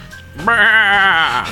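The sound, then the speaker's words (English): A single loud goat bleat, a wavering nasal cry lasting about a second after a brief quiet moment, with no talking over it. “And a goat becomes the governor of California.”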